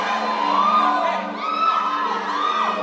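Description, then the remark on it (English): A large crowd shouts, whoops and cheers continuously, many voices overlapping in a loud, sustained roar with rising and falling yells throughout. “Even now as you're shouting, you're drawing from the wells of salvation.”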